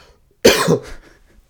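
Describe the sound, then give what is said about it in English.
A single harsh cough bursts out abruptly after a short silence, then trails off into a faint breathy tail. “I know that seemed like a movie moment when I was coughing.”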